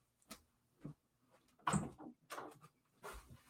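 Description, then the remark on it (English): A door is opened to let a German Shepherd puppy in from outside, with a series of clunks, rattles and knocks from the handle and frame spread over a few seconds, and no one speaking. “Let me open this door.”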